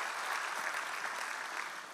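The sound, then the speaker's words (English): A church audience applauds Jesus steadily, a dense, even wash of many hands clapping at once with no voices standing out, holding a constant loudness before easing slightly at the end. “And that's worth clapping Jesus for.”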